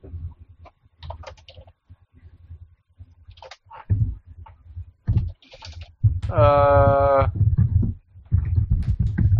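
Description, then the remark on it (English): Loud typing on a computer keyboard, picked up by a webcam microphone, with irregular bursts of clacking keystrokes over a low background hum and a brief buzzing tone partway through. “That was really loud typing.”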